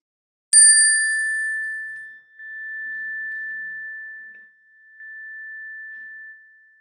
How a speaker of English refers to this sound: Let us call to our mind's eye the faces of loved ones and put their names on our lips. As I ring the chime, please speak your names or concerns, and we will hold them with you.